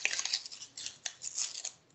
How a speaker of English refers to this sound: So they've got this paper wrapping around here, which you've actually got to tear off at this point here, which I never understood why.